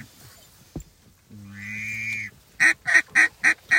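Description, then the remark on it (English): A duck call, blown as calling practice during a duck hunt, sounds a steady run of five loud quacks, preceded by a single sharp click and a longer, drawn-out buzzy note. No one speaks. “Good calling practice, anyway.”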